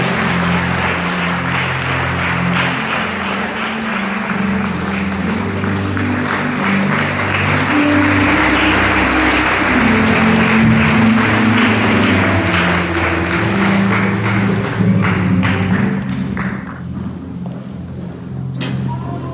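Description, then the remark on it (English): A large audience at Victor's Chapel claps continuously and loudly to receive a visiting preacher, a dense steady wash of applause that thins out near the end, with sustained low musical tones playing underneath. “And let's put our hands together and receive”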